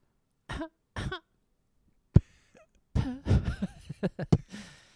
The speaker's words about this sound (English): I was in the mine all day and I'm coughing up a lung and I gotta go to the doctor because I'm tired.